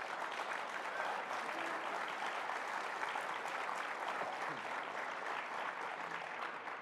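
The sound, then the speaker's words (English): Sustained applause from a friendly audience, a dense wash of many hands clapping at steady loudness for the whole stretch, with no voices rising above it. “So I thought, okay, yeah, I mean, grant you, there was a lot of applause in there”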